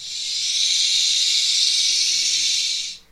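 A venomous snake gives one long, steady, loud hiss, holding for about three seconds before it cuts off abruptly. No voices or other sounds accompany it.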